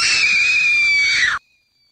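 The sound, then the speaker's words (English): A person imitates a pig: a shrill, piercing squeal, one sustained high-pitched cry held loudly for over a second before cutting off abruptly into silence. “That's like a pig. So, squeal.”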